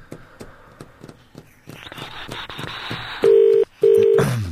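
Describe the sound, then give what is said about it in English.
After a few clicks and a stretch of hiss, a loud outgoing phone ringing tone sounds after a number is dialled: two steady electronic bursts separated by a brief pause, with no talking. “Okay, then press dial. Okay, it's ringing.”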